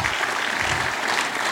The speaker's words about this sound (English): We have 138 students attending from TBC with us there at Impact Camp. And yeah, clap for that. That's awesome.